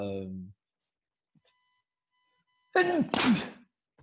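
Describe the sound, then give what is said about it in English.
A single loud sneeze bursts out after a short quiet pause, with a sharp breathy inhale-and-release; a brief fragment of a voice trails off at the very start. “Bless you.”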